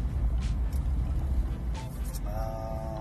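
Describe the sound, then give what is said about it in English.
Steady low rumble of road and engine noise from inside a car driving home, stuck in traffic, with a few faint clicks and a brief tonal whine rising near the end. “Driving home. Still got a long ways to go. Stuck in this traffic, yo.”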